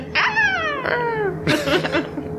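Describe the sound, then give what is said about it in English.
A voice imitates a distant hawk's screech: a couple of high, falling cries followed by a harsher, raspier squawk, loud and with no other sounds behind it. “Yes, you just saw on yours blast light out from his face as distantly a hawk screeches somewhere.”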